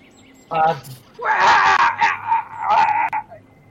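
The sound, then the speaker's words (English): A loud, strained moaning scream, meant as a duck's violent orgasm, rises after a brief vocal burst, holding a high, wavering pitch for about two seconds with quick breaks before trailing off. “It's supposed to be a very violent orgasm.”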